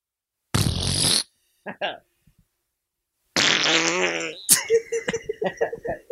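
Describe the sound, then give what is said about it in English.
A loud, buzzy mouth-made fart noise blurts out, followed by a couple of short sputters, then a long, wobbling raspberry trills into laughter and choppy voices. “Let's go around and make fart noises.”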